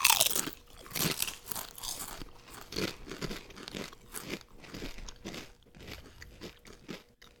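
Loud, repeated crunching as spicy tortilla chips are bitten and chewed, a steady run of sharp, crackly bursts for several seconds with no talking.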